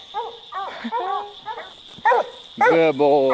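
A hunting dog barks and yelps in a quick, excited series of high, sharp calls, fairly loud, ending in a longer, louder howling bark over a faint steady whine.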